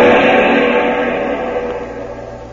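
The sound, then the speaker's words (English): A car engine runs with a steady, loud rumble in the Jungle Jim radio drama, set on the island of Java, easing off slightly toward the end, with no voices. “This is the place, Jim. Stop the car, Tom, son.”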